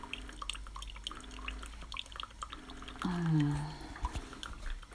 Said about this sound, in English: The sound of the dripping coffee.